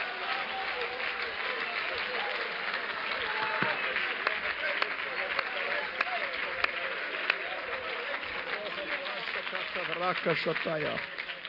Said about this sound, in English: God has become our salvation. That is worth shouting about. That is worth leaping about. That is worth clapping about. So for just a moment, go ahead and do it. Clap your hands one more time and just lift your voice.